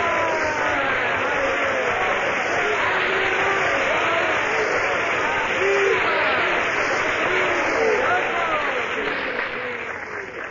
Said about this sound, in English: One of the world's outstanding pianists, Mr. Hosea Turby, has just concluded the last selection before intermission. But the applause and cheers force him to do a short encore.